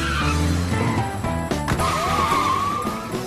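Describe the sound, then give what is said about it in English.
A car engine revs hard and loud, then a sustained tire squeal rises and holds as the car peels out from a police traffic stop, with the engine roaring underneath throughout; Roger and Stan escaping the weed barn. “Just peel out.”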